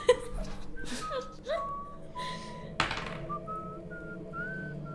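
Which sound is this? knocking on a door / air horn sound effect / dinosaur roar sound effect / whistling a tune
whistling a tune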